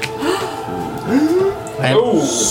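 Several people let out exaggerated, voiced gasps together, overlapping in two or three drawn-out swells, close and fairly loud, with no clear words spoken.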